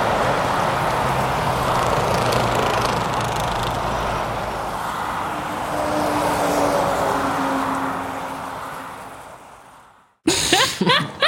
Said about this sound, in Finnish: Miten mun pitää tietää? Pitäisikö mun tunnistaa jostain tie, missä on autoja? Mun... No, mutta se on oikea vastaus. Niin, mutta mikä tie? Mikä tie se on? Tää on nyt joku tietty tie.